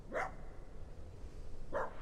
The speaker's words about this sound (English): And far off in the distance, a dog barking.